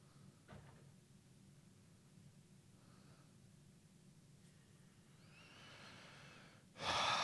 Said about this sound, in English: Like I said, I like to breathe. Breathing, for me, you know, the good thing about breathing is no matter how deeply you inhale and how long you hold the inhale, eventually you gotta let it go. You can't hold it forever. You gotta let it go.